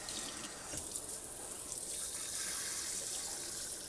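A sink tap runs steadily, water splashing and hissing against a basin, fairly loud and continuous for the whole stretch with no voices.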